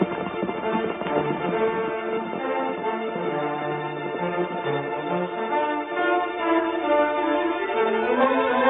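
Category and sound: animal, horses galloping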